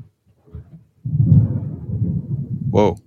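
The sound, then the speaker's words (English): A brief soft rumble, then deep rolling thunder from an approaching rainstorm that swells and grumbles steadily for about two seconds, with a short high voiced exclamation cutting in near the end. “I'm about to get rained on here.”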